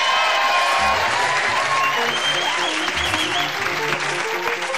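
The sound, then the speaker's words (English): A crowd claps loudly and steadily throughout, a dense wash of applause mixed with scattered cheers and whoops, with a low rhythmic tone pulsing faintly underneath. “It sounds like a great audience. Yes, really. They'll applaud anything, right?”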